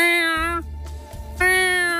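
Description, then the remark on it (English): A person loudly imitates a screaming cat with two drawn-out, high, strained wails separated by a short break, forceful, with no other talk. “Louder than that. Like your cat was screaming.”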